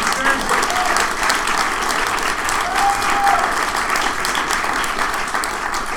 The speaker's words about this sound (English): So this show is being broadcast live right now, and my wife is the one who put it all together. I'll give her one more round of applause.